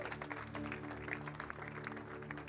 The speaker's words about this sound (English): you can just hear we have one baptism this morning. We want to celebrate. Can you clap your hands today?